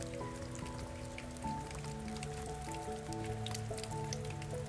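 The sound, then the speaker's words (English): Water patters and splashes steadily into a shallow puddle, a dense run of small drips and plops at low volume, with a faint steady hum running underneath and no voices. “It's just a puddle with water splashing on it, and it looked like a frog from afar.”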